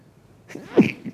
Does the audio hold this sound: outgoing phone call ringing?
no